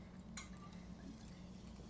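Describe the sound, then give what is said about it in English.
Water pours steadily into a glass for drinking, a continuous filling sound with a few brief clinks and splashes near the start. No one speaks. “Wine, now water.”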